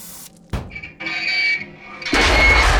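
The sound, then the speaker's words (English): A sharp clank is followed by a steady, high hiss with a thin whistling tone, then a loud, rushing roar as an oxyacetylene torch cuts into a metal door. “Tim's going to use an oxyacetylene torch on the door.”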